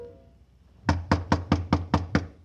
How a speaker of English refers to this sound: Right now it was a street where Paul's murderer might be waiting in a dark room behind a locked door, waiting for a knock that had to come.